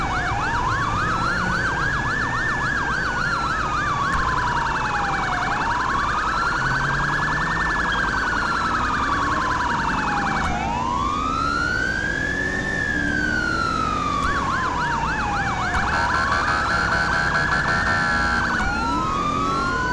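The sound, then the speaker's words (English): A police car siren wails continuously while the car drives code 3 taking an arrested person back to the station, sweeping up and down in long slow cycles with a faster yelping layer on top, loud over a rumble of traffic and engine noise. “So since this is an arrest, I can go ahead and take her code 3 back to the station.”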